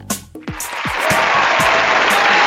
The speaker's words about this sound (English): It never gets old. The applause just never gets old. I'm spoiling you, I think, with that.